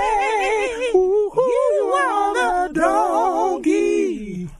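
A full-voiced a cappella 'donkey of the day' jingle: several voices sing in smooth harmony with wavering vibrato, holding and sliding notes in short phrases for a few seconds, with no instruments behind them.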